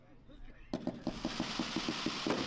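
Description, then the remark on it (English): Crackling fireworks at a New Year display: after a quiet start, a round of crackle shells snaps out a quick string of about ten sharp, bright pops in a fairly steady rhythm over a continuous hiss. “So these have crackles.”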